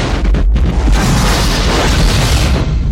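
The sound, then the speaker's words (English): A huge, roaring cinematic explosion from a 1988 film, made with flash bulbs in a building and a model, fills the sound, loud and sustained with deep rumbling bass and crackling debris that keeps rolling for several seconds. “And then there is a huge explosion, which in 1988.”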